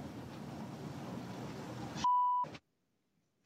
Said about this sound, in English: So what's great about that is just there's those random beeps. Like in between, when he's taking a breath or in between thoughts, there's just a beep here.